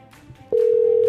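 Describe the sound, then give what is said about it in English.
A phone line's ringback tone begins about halfway through, a loud, steady electronic hum that holds to the end while a call to a woman waits to be answered, after faint background murmur. “Wait till she answers the phone.”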